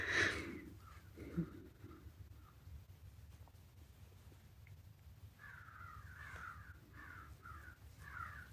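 Crows caw, a short burst at the start and then a run of five or six hoarse calls in quick succession, faint over a low steady outdoor rumble.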